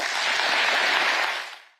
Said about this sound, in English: That was Keir Starmer getting a very big round of applause for deciding 30,000 dead Palestinians was probably enough.